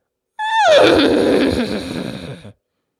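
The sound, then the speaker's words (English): A single loud horse whinny lasting about two seconds, starting high and shaky before sliding down into a rough, trembling fade, heard alone with no talking. “Okay, H is a horse.”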